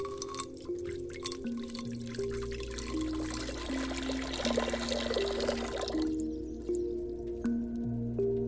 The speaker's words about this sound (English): You will use water, the element of healing and transformation, as the base. Water has many lives. It is adaptable, transformative, and ever-moving. First, pour it into the cauldron.